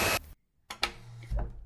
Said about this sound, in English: Mrs. Irwin, do you hear that knocking?